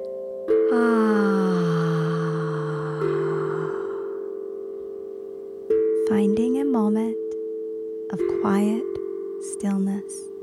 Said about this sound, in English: deep breath in, make the sound of ah as you exhale.